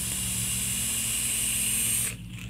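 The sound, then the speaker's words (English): A Noisy Cricket vape, freshly wicked with a single coil and filled with Yig juice, being hit: a steady, loud sizzling hiss with a faint whine holds for about two seconds, then cuts off, leaving a low hum underneath. “Man, I haven't vaped on a cricket in like 1,000 years.”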